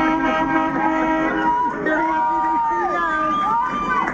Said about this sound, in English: As the giant white cruise ship tied up at a remote dock in Oakland's outer harbor, passengers waved and cheered from their balconies. One shared this video with KCBS as those aboard reacted to truckers at the port honking in support.